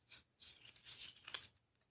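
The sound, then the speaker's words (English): A slap bracelet being handled and snapped: several soft, hissy scraping rustles build up to one sharp, bright snap, then a brief rustle before it goes quiet. “That's a slap bracelet.”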